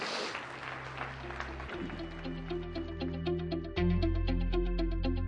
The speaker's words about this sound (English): Can we give the Lord a big hand clap this morning?